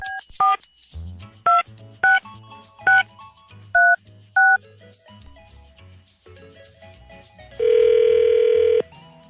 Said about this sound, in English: Call him back right now. Okay. And we're dialing.